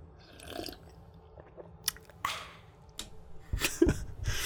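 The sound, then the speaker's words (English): Someone sipping beer: quiet wet slurps and swallows, with a few sharp mouth clicks and a louder gulping cluster near the end, no talking. “First, I'm going to take a sip of my beer.”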